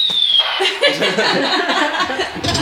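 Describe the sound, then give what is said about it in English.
A short falling whistle gives way to a loud, sustained blast of rumbling, crackling noise, a cartoon bomb dropping and exploding sound effect played on a sound effects machine, with no voices over it. “Or no, the bomb. Yeah. If I ever make a joke that bombs, then I do this one.”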